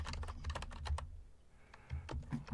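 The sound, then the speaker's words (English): Rapid keyboard typing by a producer, a quick run of crisp key clicks that pauses briefly in the middle before a few more keystrokes resume. “She's typing at us.”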